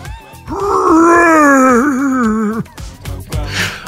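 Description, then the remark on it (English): A human voice imitates a lion's roar in a scary jungle scene: one long, loud, wavering groan lasting about two seconds, followed by a few short breathy noises. “This jungle is scary. Oh no! A lion!”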